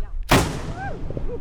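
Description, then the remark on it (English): A single thunderous blast from a historic cannon pointed towards Lake Michigan, fired as a welcoming salute by reenactors at Colonial Michilimackinac, erupts after a brief quiet, then rolls away in a long booming echo across open space, with faint voices afterward. “He and 2 other men gather around the cannon pointed towards Lake Michigan.”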